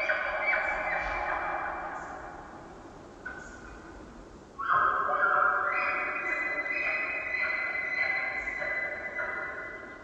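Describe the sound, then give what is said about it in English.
Long, high whistling calls rise and overlap as a bull elk bugles, one fading before a louder, fuller chorus of tones swells in and holds as several cow elk call back, echoing through a valley. No one speaks. “This bull is trying to lure cows away from the competing bull's harem. Several of the females call back.”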